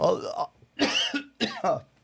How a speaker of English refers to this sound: God dang it. Getting coughs going.